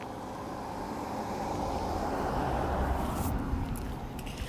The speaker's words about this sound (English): I'll just wait for this car to go by.